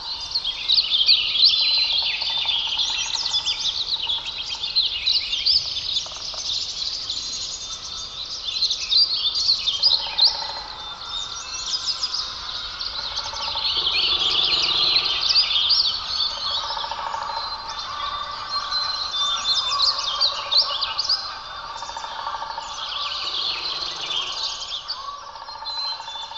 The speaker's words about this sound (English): In the voices of birds, we hear augury, portent, prophecy. We are drawn across boundaries into other places, other times. Listen, an invitation.